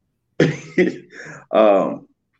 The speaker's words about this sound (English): I still have the shortness of breath. The coughing, there's the phlegm that comes up, there's the sinuses that drain.